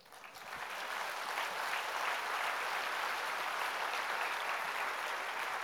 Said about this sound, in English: Clap for Jesus.